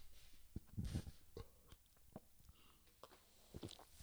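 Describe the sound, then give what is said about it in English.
Quiet sipping of canned Asahi beer, brewed and canned in Japan and imported to the United States: a short cluster of wet slurps and gulps, then scattered soft clicks and swallows spread over a few seconds, with no talking. “So let me take another real quick sip.”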